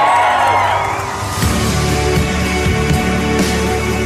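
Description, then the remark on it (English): A large crowd at a campaign rally in Virginia cheers and shouts continuously, with scattered whoops rising above a dense, steady roar that stays loud throughout. “These crowds are like this everywhere we go.”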